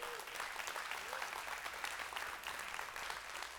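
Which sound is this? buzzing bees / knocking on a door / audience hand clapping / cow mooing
audience hand clapping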